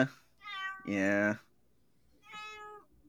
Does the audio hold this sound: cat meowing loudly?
yes